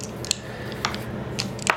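Dice clatter in a handful of quick, bright clicks spaced irregularly over a second and a half, with a low steady hum underneath and no voices.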